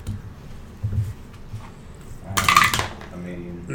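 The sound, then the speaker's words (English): A brief, bright clatter of dice tumbling across a hard tabletop, a single quick burst over a low murmur of background voices. “like throwing dice.”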